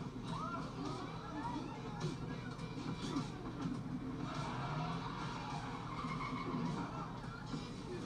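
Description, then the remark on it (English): Car tires squeal in long, wavering shrieks as a vehicle drifts in San Francisco, sustained over a steady roar of engine and road noise, fairly loud and continuous throughout with indistinct voices underneath. “Yes, drifting genius.”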